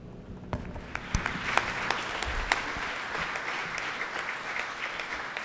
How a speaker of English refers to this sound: don't clap for him, but powerful that someone experienced something like this that can get up and touch our lives with that story when it's very hard to do.